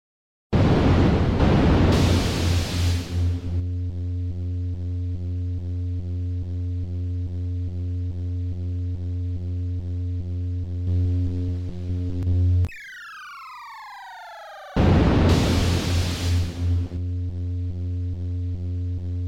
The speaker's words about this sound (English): But if I'm being honest, the main reason I'm giving it so high for sound is just that the simple lightsaber humming and how it reacts to you fighting is really cool, and it helps with the theming a lot.